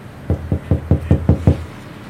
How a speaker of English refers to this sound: But I'll be considerate, because she is literally 30 feet in front of me. Just gotta knock on that door.